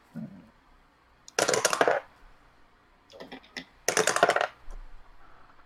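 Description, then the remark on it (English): Many dice clatter across a hard tabletop in two loud, rattling bursts, with a softer, shorter rattle between them and quiet pauses around each roll, rolled for damage in a tabletop role-playing game. “Stop rolling so many dice.”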